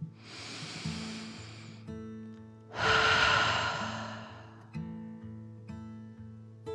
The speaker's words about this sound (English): Then the train took a deep dragon breath in and out.